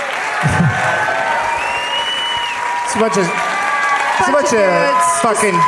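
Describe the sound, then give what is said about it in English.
A crowd at a live show in New York City breaks into a loud, sustained standing ovation with cheering, a dense wash of clapping steady throughout, with voices whooping and shouting over it and rising excitedly toward the end. “Finally, we got some show standing for the ovation ladies.”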